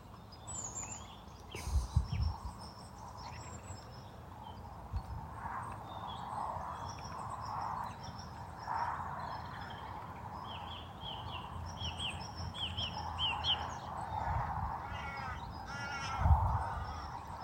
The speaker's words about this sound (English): I don't know what kind of bird makes that noise.